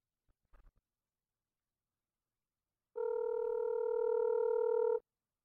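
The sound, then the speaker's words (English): A brief soft clatter, then after a pause a steady two-second electronic ringback tone of an outgoing phone call, loud and clear with no talking. “should I give him a quick ring right now?”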